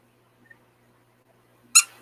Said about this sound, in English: What's happened is the pig squeaker has shifted, so I have to get it back to where it's in his guts.